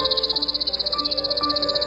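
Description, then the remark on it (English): A chipping sparrow (Spizella passerina) sings a steady, dry, high-pitched trill of rapid identical chips, fairly loud and even, running unbroken for about two seconds with faint lower tones underneath. “The chipping sparrow. Today's Talkin' Birds featured feathered friend.”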